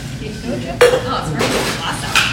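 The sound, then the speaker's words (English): A cocktail shaker glass is smacked against a palm where the glass and metal parts meet, giving a sharp, bright knock with a metallic clink, followed by a rattle of ice and a second, softer tap. Faint voices murmur underneath. “So smack the glass against your hand.”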